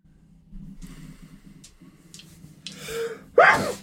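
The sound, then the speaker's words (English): A few quick sharp inhales build up before one loud, explosive sneeze bursts out at the end, with no talking. “Bless you. Bless you. Bless you.”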